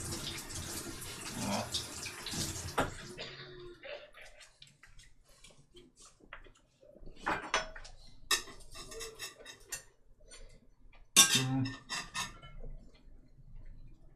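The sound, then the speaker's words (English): Wet, clicky chewing and mouth noises from people eating, coming in irregular bursts with soft breathing between, a louder rustling stretch at the start and a few sharper crunches later. “It's the ASMR part where you can hear us chew and breathe.”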